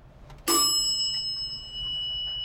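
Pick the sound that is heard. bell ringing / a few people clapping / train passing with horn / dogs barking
bell ringing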